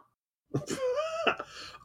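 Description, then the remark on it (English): A woman, someone's wife, coughs: a couple of rough, throaty bursts run into a drawn-out, voiced groan, then another short cough, all fairly quiet, following a moment of silence. “Hey, tell the wife to stop coughing.”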